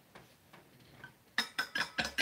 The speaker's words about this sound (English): Clink, clink, clink. Sounds so fancy. It's my coffee. Fancy coffee. Not really fancy.